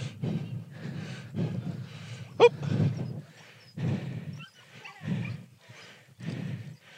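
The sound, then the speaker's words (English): Dogs bark and snarl at each other in a string of gruff, overlapping bursts, with one sharp yelp partway through; a rough scuffle with no talking. “That was the dogs we were talking about, but they were dogging off against each other.”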